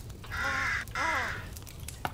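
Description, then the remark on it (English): A crow caws twice, loud, each call harsh and drawn out, with a short pause between them. Quiet background follows. “I can smell a smelly, smelly, smelly crow right now.”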